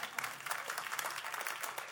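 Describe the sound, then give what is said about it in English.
A church audience applauds together after a commissioning prayer, a dense, steady wash of many hands clapping at once that fills the space evenly without letting up. “You can clap.”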